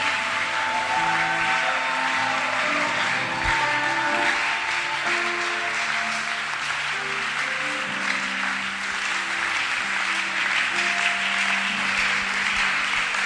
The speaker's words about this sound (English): Oh, do a better clap offering to our Father in the house. What a great Father we have.